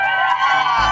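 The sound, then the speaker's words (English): A dense, loud wash of crowd cheering and shouting outdoors on a plaza, steady for about a second, with a low rumble swelling underneath toward the end. “Crowd is pumped up.”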